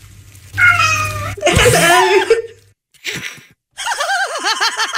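A cat lets out several loud, drawn-out meows, their rising and falling pitch sounding almost like a spoken "hello," separated by brief pauses, with a faint low hum underneath.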